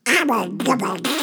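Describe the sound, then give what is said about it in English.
A cartoon duck quacks in a rapid, nasal, garbled babble, three or four squawking bursts run together, loud, with no other sounds around it. “That's the wrong duck.”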